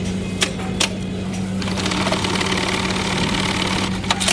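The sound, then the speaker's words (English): An industrial sewing machine bar tacking a bell loop, with a steady low motor hum under dense, rapid mechanical chatter and a few sharp clicks at the start and end. No one speaks. “Bar tacking.”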